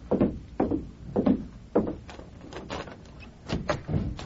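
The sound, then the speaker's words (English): A hotel room door is unlatched and opened at midnight, with a run of wooden clunks, rattles and creaks spread over a few seconds, fairly quiet and with no voices. “Stand to one side, Tonto, and cover me while I open the door.”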